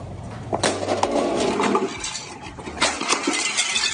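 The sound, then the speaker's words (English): A Keurig coffee machine is smashed with several sharp, loud crashing impacts, plastic and metal clattering and rattling between the blows in a busy racket with no talking. “So people on the internet have been posting videos and pictures of themselves smashing their Keurig coffee machines.”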